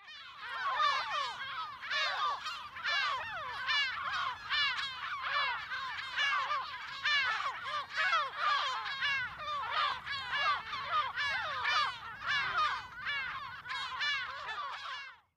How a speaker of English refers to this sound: The lesser blackback gull is similar to the herring gull, but rougher sounding. Let's have a listen to them.